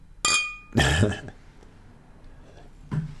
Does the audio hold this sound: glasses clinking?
yes